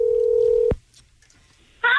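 A steady electronic phone tone hums for a moment as radio station K-Rock's Klein Alley Show dials a contest finalist's phone number picked at random, ends with a sharp click, then after a short quiet gap a brighter touch-tone beep sounds, clear with no talking.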